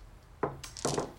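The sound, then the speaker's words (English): A pool of three dice, two of them hunger dice, is rolled for a strength plus brawl check, clattering onto a hard surface in two quick bursts of sharp, bright clicks and rattles, the second following less than half a second after the first, with no voices. “So 3 is your total, 2 is your hunger dice. 2 hunger dice, yeah. And the total 3, right? Yep. Okay. That's right. So roll it.”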